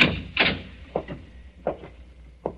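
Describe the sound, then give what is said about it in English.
An unlocked door leading down to a cellar is unlatched and swung open, giving a handful of sharp clunks and knocks spaced irregularly, fairly loud against a quiet background, with no voices. “You see, it's unlocked, as he left it.”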